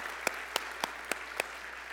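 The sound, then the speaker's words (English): An audience clapping together in a steady rhythm, five sharp, crisp claps evenly spaced over a low murmur of crowd noise, with no one speaking. “It's all right for us to just clap like that.”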